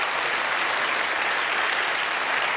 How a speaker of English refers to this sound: Stand up if you are an usher in this church. Just stand up if you are an usher. They're sitting right next to you. The only difference is they contribute and maybe you don't. And let's give our ushers a big round of applause.